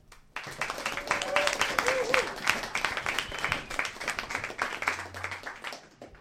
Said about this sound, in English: Please give a warm welcome. Please clap your hands, stamp your feet if you like